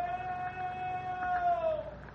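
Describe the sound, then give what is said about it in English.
A single drawn-out, high-pitched scream holds steady for about two seconds, then slides downward in pitch as it fades. It is a thin, wailing cry with no talking over it. “What was that? Sounded like a scream.”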